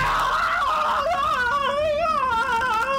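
A man dangling from a rope over the side of a ship screams loudly and without a break, his high, strained voice wavering and quavering up and down for several seconds. There is no speech, just the continuous panicked cry.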